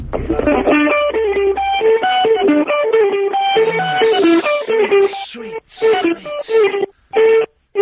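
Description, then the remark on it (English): A heavily distorted electric guitar, played by a guitar correspondent in Kingston calling in by phone, plays a fast, busy heavy rock riff through a thin, band-limited telephone line, clipping and crackling loudly, with brief dropouts near the end. “He's distorting his phone, he's rocking so hard.”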